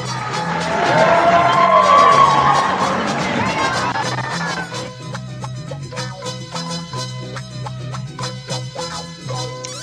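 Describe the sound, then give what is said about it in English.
A loud crowd cheers and whistles for a few seconds, then the roar gives way to steadier clapping over a low sustained hum. No one speaks. “Let's get the crowd into it. Come on, crowd. Give another hand”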